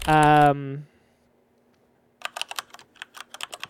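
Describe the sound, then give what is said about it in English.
A short voiced sound opens, then after a pause comes a rapid, forceful clatter of keyboard keys being hammered, loud, in quick uneven bursts. “Yeah, that sounds like aggressively typing.”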